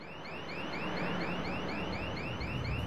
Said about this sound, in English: How can you hear anything over that alarm?